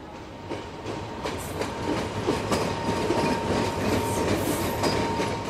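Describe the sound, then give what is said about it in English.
An IRT elevated subway train running along Broadway in Manhattan rumbles steadily along its tracks, its cars clattering over the rails in a dense, continuous roar with faint rhythmic clicks and a thin metallic whine, loud, with no talking. “It's the IRT elevated train, which used to run along Broadway”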